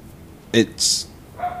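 A dog gives one short, sharp bark, followed moments later by a briefer, thinner yelp against a quiet background, picked up on a microphone.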